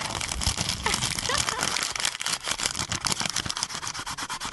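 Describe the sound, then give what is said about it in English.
Paper rustles and crinkles as a sheet with a handwritten question is unfolded, a dense run of crackling, scratchy bursts lasting several seconds with no talking. “Paper fetishists, gather around the speakers. Hold your headphones close.”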